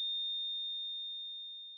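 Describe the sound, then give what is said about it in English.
A single sustained electronic beep, a steady high-pitched pure tone that holds for nearly two seconds and tapers slightly in loudness toward the end, with no voices. “Time of death, 11 minutes and 4 seconds. Beep.”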